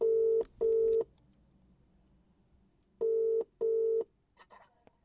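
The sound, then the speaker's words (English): Telephone dialing tones as a call is placed: two pairs of steady, loud electronic beeps separated by a pause, heard alone with no talking and faint background noise. “And as a result of what I found, I had one more phone call to make.”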